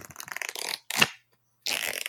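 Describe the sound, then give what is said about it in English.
A deck of playing cards is shuffled: a crackling riffle, a sharp bridging flutter, a brief pause, then another quick riffle. The sound is crisp, papery, and fairly loud, with no voices. “So let me get them all shuffled.”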